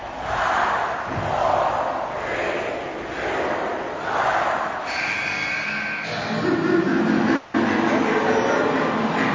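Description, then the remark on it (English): A wrestling crowd roars and cheers continuously in swelling waves as Big Show stands and points to the ropes during his match with Abyss, loud and dense throughout, with a brief sharp cut near the end before the noise resumes. “Show standing now to a roar and pointing to the ropes for a cheer, picking Abyss up and going to throw him out when the clock appears again.”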